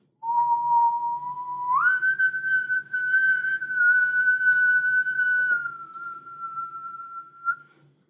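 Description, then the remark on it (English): A shrill Navy bosun's whistle call sounds alone: a steady low note swoops up to a higher piercing tone, holds for several seconds, then tapers slightly before cutting off. “The bosun's whistle.”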